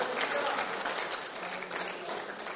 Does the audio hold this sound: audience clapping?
yes